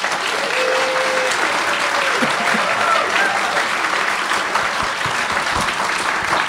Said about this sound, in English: Please, a warm round of applause for our panel.